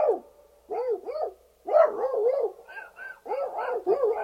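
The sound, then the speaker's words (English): A person imitates a dogfight among dogs in a sub with a rapid, frantic string of barks, yips and growly yelps, bursting in uneven clusters with brief pauses, loud. “He got into a dogfight in the sub with the other dogs that were on it. Yeah, I knew it. You're a hoser. But the dogfight in the sub sounded like...”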